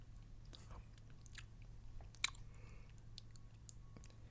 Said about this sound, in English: The giant doughy creature begins chewing.